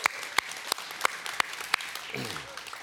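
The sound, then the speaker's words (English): An audience claps together for God, with sharp, evenly spaced claps standing out above a dense wash of applause; near the end a low voice briefly speaks as the clapping continues. “Let's clap for God, right?”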